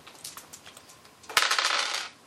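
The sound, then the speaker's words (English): Dice rattle briefly in a hand with light clicks, then clatter and tumble across a hard tabletop in a loud burst of bright, rapid clicks before settling; a strength roll in a tabletop role-playing game, landing on snake eyes. “Go ahead and roll your strength.”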